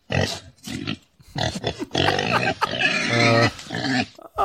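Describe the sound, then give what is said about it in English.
A pig oinks and squeals in a quick series of loud, high-pitched bursts with short gaps between them, and no one speaks over it. “That would have been better if it was like a rooster. It's a pigskin.”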